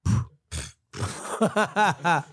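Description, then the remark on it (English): Someone makes a mouth imitation of a queef: two quick, breathy sputtering bursts, then a run of wavering, voiced grunty noises, all fairly loud. “Hey, you a V fart. yo. That was disgusting.”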